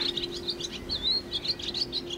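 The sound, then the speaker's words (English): Finches and sparrows in a garden chirp continuously in quick, high-pitched bursts, several short tweets overlapping with a few brighter rising calls, over a faint steady low hum and no voices. “Cormorants, egrets, and just here on the garden, we have finches and sparrows, and we have the swallows that build the mud nests up on the top of the housing units, the cell blocks.”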